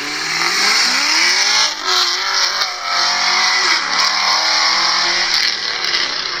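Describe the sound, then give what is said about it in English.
A Camaro's exhaust roars loudly as the car rolls past on its first drive-by pass, its deep engine note rising and falling through the pass with steady throttle, no voices over it. “Here's pass number one on the Camaro. And here's a second time in case you want to crank it up and really hear it roar through those speakers.”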